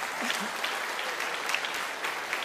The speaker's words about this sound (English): Go ahead and take a seat. A round of applause for our youth here today.